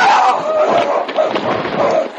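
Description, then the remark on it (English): An ice floe, carried by the current, grinds hard into solid shore ice: a loud, continuous crunching roar lasting a couple of seconds, with harsh squealing tones threaded through the rough noise and no voices. “The ice floe ground into the solid shore ice.”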